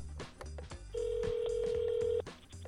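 A telephone line rings once, a steady electronic ring tone lasting over a second, heard over a rhythmic music bed with no one speaking, as a call is placed to the Humane Society.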